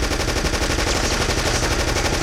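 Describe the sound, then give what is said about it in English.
Rapid, sustained machine gun fire ripping into a car holding federal agents and two Kansas City police officers, a dense stream of loud, sharp reports rattling out in a fast, steady rhythm with no pauses and no voices. “Machine gun fire ripped through the scene.”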